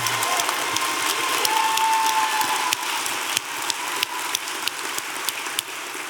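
A crowd applauds steadily for several seconds, a dense patter of many hands clapping at an even level, with sharper individual claps standing out now and then and no voices.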